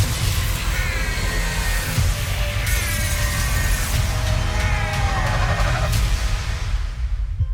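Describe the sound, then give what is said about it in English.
A loud car horn blares in long, wavering bursts whose pitch bends up and down almost like a whinny, layered over a constant heavy rumble for several seconds. “I want to go install that horn in my car, dude.”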